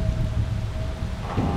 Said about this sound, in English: The wind blew stronger, the rain fell harder, and the thunder echoed a name which must not be spoken aloud.